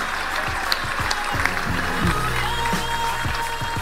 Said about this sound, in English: A round of applause for Brandon Stanton. Thank you.